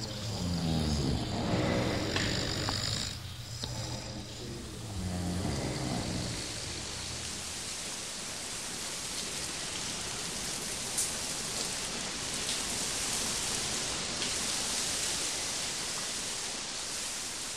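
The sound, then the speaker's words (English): Steady rain pattering on a street, a dense, even hiss that continues without letup; the first few seconds also carry a low rumbling, tonal sound before the rain takes over alone. “In the morning, the streets are damp. The quiet streets and smell of rain make it seem like Sunday.”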